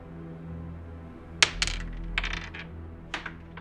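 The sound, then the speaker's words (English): A die rolled during a game clatters onto a hard floor, landing with a sharp click and then a few quick, bright rattling bounces over about two seconds before settling, showing a 20. No one speaks. “Hang on, I gotta chase this one onto the ground. Give me a number from the floor.”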